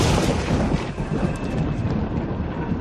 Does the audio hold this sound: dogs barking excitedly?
no